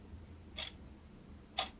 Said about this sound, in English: I think we feel differently about the presence of time. So I asked him again, why all the clocks? I grew up in a house with ticking clocks.